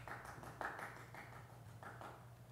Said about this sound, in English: Not the loudest round of applause, but better than none. I appreciate it.